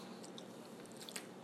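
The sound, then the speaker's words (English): Quiet crunching of someone chewing nuts, a few small crisp bites scattered over a soft steady background hiss, with no talking. “Sorry, I'm eating some nuts, guys.”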